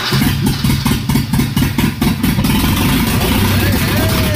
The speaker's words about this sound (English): There it goes. The ride is off. Running great. Accelerator works. Listen to that. After 20 years of sitting. Oh, my gosh.